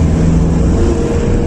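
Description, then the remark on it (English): A steady engine drone with a low hum, like a car driving along, holding an even loudness throughout with no voices. “Car's too big for you, pal. You should have bought the smart car.”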